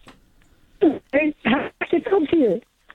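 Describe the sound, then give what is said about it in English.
A narrow-band telephone voice of a radio phone-in caller from Mount Pleasant comes through in choppy bursts, breaking off abruptly into silent gaps so the speech is fragmented and hard to follow. “Oh, I'm not sure, but there seems to be a problem with the phone cutting out.”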